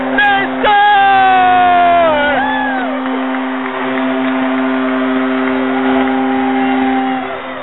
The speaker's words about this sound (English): And all the cheers here are kind of bittersweet because they just wanted the Avalanche to score because they have no chance in hell to win.